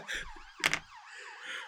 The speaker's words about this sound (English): Sirens are getting louder.